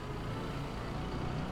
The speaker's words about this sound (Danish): Trafikken på Værnedamsvej har i årevis været til heftig debat. Og her er vejens parisiske kaos gang på gang blevet truet med planer om at skabe orden i gaden.